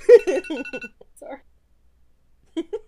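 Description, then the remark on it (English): A short electronic alarm plays a quick run of bright, ringing beeps in an even rhythm, then falls silent before a voice briefly speaks near the end. “Sorry, I just had a little crisis and then the alarm went off and fine, you win.”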